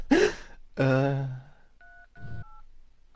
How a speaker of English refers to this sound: The tension I'm building as I retardedly type these numbers into my phone is palpable.